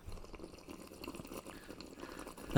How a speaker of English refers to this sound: Sip.